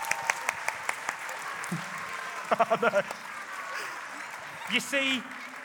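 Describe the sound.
Audience applause with a steady wash of clapping throughout, a few sharp individual claps standing out early on, and brief voices or cheers rising above it.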